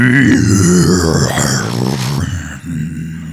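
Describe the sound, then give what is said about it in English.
A person voices a long, loud, guttural roar imitating a huge beast, rough and growling, sustained for about two seconds before trailing off into a lower rumble. “And I just stand up on my hind legs and let out a mighty roar.”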